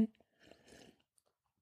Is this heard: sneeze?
no